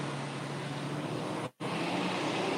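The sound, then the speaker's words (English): A big truck roars past, a loud, steady engine rumble and road noise filling the whole moment, broken only by a brief dropout midway. No one speaks. “Hold on, big truck.”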